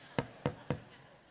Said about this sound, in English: You seem to answer the door soon enough when the pizza man knocks.